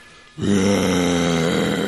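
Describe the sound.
A person imitates a dinosaur roar: after a brief quiet moment, a loud, sustained, low growling roar with a rough, buzzing quality holds steady for over a second.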